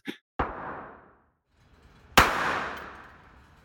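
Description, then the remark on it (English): Two sharp, loud pistol shots about two seconds apart at an indoor shooting range, each followed by a long echoing decay. A small click comes just before the first shot, and no one speaks. A few young people are firing the pistol at human-shaped targets. “They might have been teenagers, a couple of boys and a young woman, and they were firing a pistol, and the targets were basically human-shaped.”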